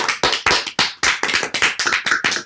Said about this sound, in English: Should we give it a round of applause? A round of applause.